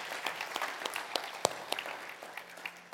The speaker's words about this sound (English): Well, good morning. Can we give the Lord Jesus just a hand clap this morning?